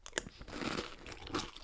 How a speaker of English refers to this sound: You do know that's not cereal. That's Max's dog food. This is delicious.